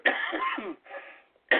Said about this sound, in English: I'm sorry. I don't have a cough button. This is a low-budget show, folks. I'm going to have to deal with it.